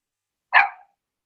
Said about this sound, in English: Perfect bark. Perfect bark.